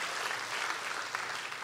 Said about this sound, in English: Can we clap our hands for our generous God?